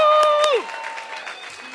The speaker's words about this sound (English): There is a couple in this room that just got engaged. They don't want me to say who they are, but I want a loud round of applause.